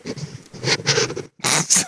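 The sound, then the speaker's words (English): Someone blows their nose in a loud, wet, breathy honk, then pauses briefly before a second forceful blow. No talking is heard. “I gotta blow my nose.”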